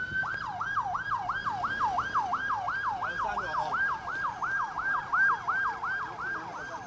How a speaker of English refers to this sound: Some of the students have been rushed to the hospitals, and ambulances kept arriving here at the school to take care of the situation.